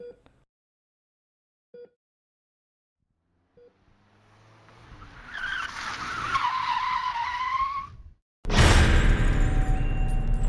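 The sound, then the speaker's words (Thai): A few faint beeps, then a speeding car's tires screech in a long, swelling skid as it swerves out of control, before a sudden loud crash into a roadside barrier as the car plunges off a mountain, with harsh metallic clatter ringing on to the end. “ด้วยความเร็วและแรงเหวี่ยงทำให้รถยนต์สะบัดไปมายากแก่การควบคุมรถยนต์จึงพุ่งเข้าชนที่กั้นถนนข้างทางและพุ่งตกเขา”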